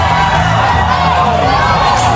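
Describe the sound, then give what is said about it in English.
A large rodeo crowd in Florida screams and shouts in a dense, continuous, loud roar of overlapping voices, with high cries and whoops rising throughout as panic spreads through the stands after a cow jumps over the pen into the crowd. “Just jumped over the pin and now it's in the crowd.”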